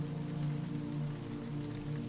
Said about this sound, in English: Rain begins to fall and taps against the windows in a staccato patter. The thatched roof softens the sound as if the raindrops fall on a bale of hay.